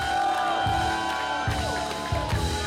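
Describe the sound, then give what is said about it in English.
An audience shouts and cheers together to the Lord for 15 seconds on a preacher's call, a loud, continuous roar, with rougher bursts of voices rising every second or so over steady sustained tones. “I want you to shout for 15 more seconds right now.”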